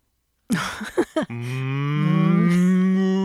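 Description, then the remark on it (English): A single loud, drawn-out cow moo, starting with a few rough grunting bursts before swelling into a long sustained bellow that rises slightly in pitch toward the end. “I asked the cow, "What's that strong whiskey distilled from corn mash?”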